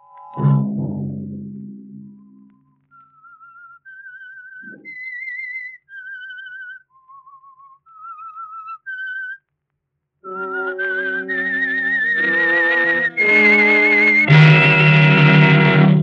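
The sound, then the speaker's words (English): The whistled theme of The Whistler, a CBS Radio detective show broadcast from 1942 to 1955: a lone melody of about nine sustained, wavering notes that rise and fall, framed by a low orchestral swell before and loud, full orchestral chords after. “I'm the Whistler.”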